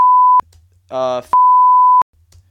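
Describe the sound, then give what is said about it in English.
Two loud, steady censor bleeps, a short one and then a longer one, with a brief snatch of a man's voice between them, as if a name were being blanked out. “He just put a beep right there.”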